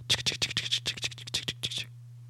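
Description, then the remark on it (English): Someone trying to open the front door of an apartment: about a dozen quick, scratchy metallic rattles in an uneven rhythm over a steady low hum, stopping abruptly after a couple of seconds. “Somebody trying to open the front door to the apartment.”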